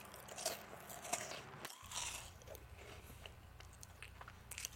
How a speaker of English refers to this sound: The smell of the food captures her attention. And before you know it, she's scarfing and wolfing the food down.